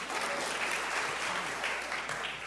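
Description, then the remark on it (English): A church audience claps together as a clap offering to the Lord during a sermon, in a dense, steady wash of applause, many hands overlapping into a continuous bright patter that holds at an even, moderate loudness throughout. “Yeah, give the Lord a clap offering.”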